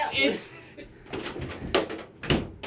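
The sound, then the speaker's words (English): A door being opened as a sound effect, with a couple of sharp clunks and rattles from the latch and frame, amid some faint background murmuring. “You ain't got to open the fucking door. Yes, he does. It's sound effects.”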